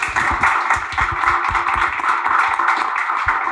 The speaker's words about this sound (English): I think that deserves a round of applause, at least three.